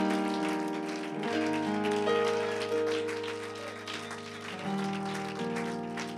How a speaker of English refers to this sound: Clap your hands. Give the Lord praise.